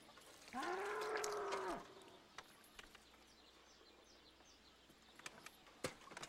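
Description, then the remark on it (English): A bull lets out one loud, drawn-out moo lasting just over a second, followed by quiet outdoor ambience with faint bird chirps and a few sharp clicks. “We don't have a cow. We have a bull.”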